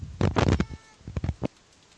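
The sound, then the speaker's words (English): Quick bursts of keyboard typing as someone types in an answer to a trivia question: a rapid run of crisp clicks, a short pause, then a second shorter flurry of taps before it goes quiet. No voices. “You're typing.”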